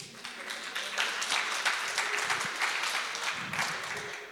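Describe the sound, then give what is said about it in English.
An audience claps steadily for a few seconds, a dense patter of many hands at moderate loudness that stays fairly even throughout, with a faint voice briefly underneath. “Thank you for the pity clap.”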